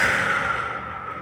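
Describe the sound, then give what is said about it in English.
A steady, breathy whoosh of air, a slow exhale lasting about a count of six in a breathing exercise, gently tapering off without any talking. “So make sure that your inhale goes for like 4 and your exhale is like 6.”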